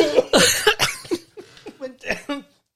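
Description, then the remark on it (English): A fit of harsh, spluttering coughs after a drink went down the windpipe, bursting out loudly at first and then tapering into smaller hacking coughs and gasps, with speech mixed in. “Went down. Down the wrong way. Down my windpipe.”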